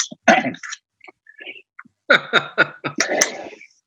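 Exaggerated coughing with wheezy, strained breaths: a harsh burst, a few scattered gasps, then a rapid run of five or six raspy coughs that trails off.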